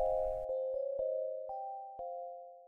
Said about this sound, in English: Ding dong, the doorbell rang.